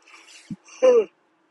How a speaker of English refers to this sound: Big yawns.